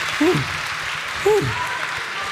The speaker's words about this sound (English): Well, I think we should give a round of applause for them.